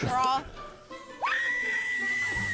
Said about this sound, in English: Ooh, here, scream into the pillow.